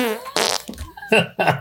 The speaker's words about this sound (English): Right. Fart button's fine, though.